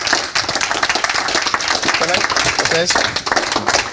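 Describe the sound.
A crowd at an SA Mastermind group applauds steadily for speaker Mark Homer for several seconds, a dense, loud patter of many hands clapping at once, with a few voices calling out briefly partway through.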